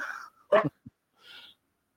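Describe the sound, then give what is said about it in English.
A dog named Bella barks once, sharply, somewhere in the background, with a softer yelp before it and a faint whiny note after. No one speaks, and the sounds are fairly quiet. “as Bella barks in the background, gotta love dogs.”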